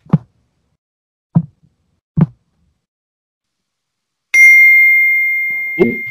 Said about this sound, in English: That's a clicking noise.